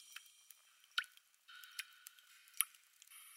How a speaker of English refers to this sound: The steady drip, drip, drip is disconcerting.